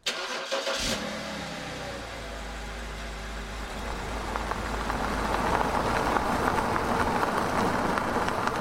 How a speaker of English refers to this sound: We climbed into the truck and took off down the road.